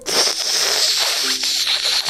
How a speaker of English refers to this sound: That's a long, long slurp. Thank you. It's all of the tea I spent your money on.